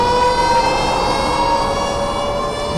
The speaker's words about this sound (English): There's the Pervnado siren.